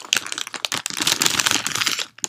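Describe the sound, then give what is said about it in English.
Someone munches on a snack at 8 a.m.: a dense run of crisp, crackly crunching and crinkling for about two seconds, with no talking, ending in a short final crunch. “I'm just, like, munching on a snack.”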